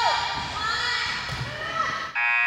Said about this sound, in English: That buzzer mean it's halftime. That buzzer mean at halftime. That buzzer mean at halftime.